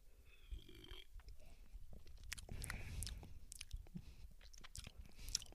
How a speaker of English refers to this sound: Okay, you want to take a sip? I can smell a marshmallow. I can smell a marshmallow in there.